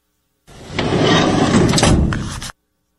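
A heavy wooden barn door rumbles along its track for about two seconds, a continuous grinding slide ending in an abrupt stop as it shuts.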